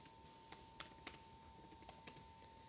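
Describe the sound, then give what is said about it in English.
Irregular clicks of computer keyboard typing as a Google search is entered, about eight sharp keystrokes spread unevenly over a couple of seconds, fairly quiet, over a steady low hum with no voices. “is typing.”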